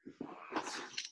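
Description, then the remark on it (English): A single sneeze, a few quick sharp intakes of breath building into one bright, hissy burst that trails off within about a second, with no talking. “Bless you.”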